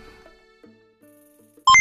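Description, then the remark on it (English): Beeps and boops of a 'calculating computer' being activated to score a game: quiet, steady electronic tones that step between pitches, ending in a sudden loud, bright burst of sound. “Calculating computer activated. Computers. Beeps. Space! Boops.”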